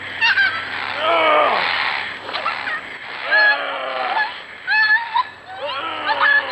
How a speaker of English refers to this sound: Play the audio. It's just a goddamn dog. This isn't like a human being screaming and begging for its life. It is a dog. Play the goddamn audio, which here it is.